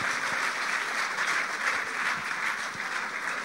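A crowd applauds for the Lord steadily, a dense wash of many hands clapping at once, sustained and fairly loud throughout with no voices standing out above it.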